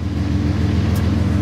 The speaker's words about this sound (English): You can hear the sound of that diesel engine revving up. We are out of here.